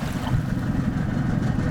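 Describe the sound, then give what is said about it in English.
A boat engine chugs slowly and steadily on the water at Hanwell, going about 3 miles an hour as the boat approaches with caution, a low, continuous rumble with faint wash and wind around it, with no talking. “Cutting the engine. And now reverse.”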